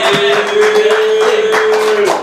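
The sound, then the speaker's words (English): An audience at a rap show applauds a performer, a dense, steady wash of many hands clapping at an even, loud level for about two seconds, with a sustained mid-pitched tone running underneath. “Give it up for him.”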